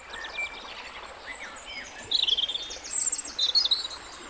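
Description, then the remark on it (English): A lively mix of small songbirds in a valley on the edge of Dartmoor: a wren's close, rapid trilling song from the gorse over distant twittering and chirps of linnet, redpoll and meadow pipit, with a cuckoo calling; high bright phrases repeat throughout. No talking. “wren just in the gorse here, linnet and redpoll and medipipit in the distance, and there's cuckoo, and that's of course what the cuckoo is interested in, the medipipit's nests.”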